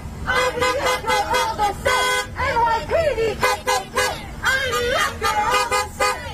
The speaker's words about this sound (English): Oh, they're going to honk their horns along with it.